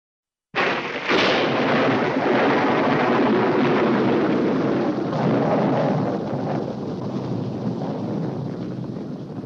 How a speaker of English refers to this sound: I think we've been struck by lightning.